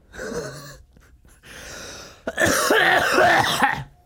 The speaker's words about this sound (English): Oh my god, dude. I've had this fucking vicious cough for a while. I don't know what it is.